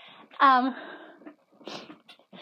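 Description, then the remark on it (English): A dog gives a short, high whimper, then a few soft, breathy panting bursts follow as the dogs are being put out of the room. “Okay, sorry, we're kicking our dogs out right now.”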